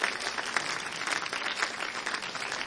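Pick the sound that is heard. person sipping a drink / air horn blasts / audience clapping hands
audience clapping hands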